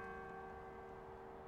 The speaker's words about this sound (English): See, there's the Catholic bell going up. That's the Catholic church right there.